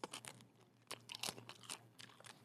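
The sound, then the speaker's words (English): Crisp crunching of food being chewed, a run of sharp irregular bites and grinding crackles over about two seconds with no talking. “I feel that crunch.”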